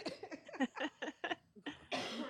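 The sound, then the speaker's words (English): A fairly loud fit of coughing: a rapid string of short, harsh bursts followed by a couple of rougher, breathier coughs at the end, with no talking. “I wish I had a cough button.”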